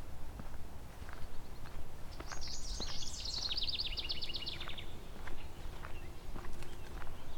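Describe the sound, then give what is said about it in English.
A yellow warbler, just flown out of a shrub along a trail, sings one bright, quick phrase of high, sweet notes, heard over steady crunching footsteps along the trail. “Yellow warbler.”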